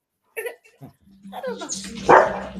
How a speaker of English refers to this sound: Yeah, the dog wants to be part of the show too.